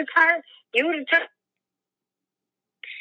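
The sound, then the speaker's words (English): Thin, band-limited phone-line speech comes in choppy bursts, then cuts out to dead silence for over a second before a narrow burst of signal returns, like a call dropping in and out. “Your phone's breaking up. What did you say?”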